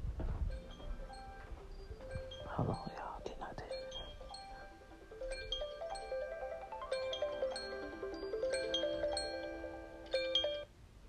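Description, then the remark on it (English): An iPhone alarm plays a bright, repeating electronic melody of chiming tones, steady, with a brief rustle and faint murmuring early on before the tune takes over. “She got on every goddamn alarm on her iPhone.”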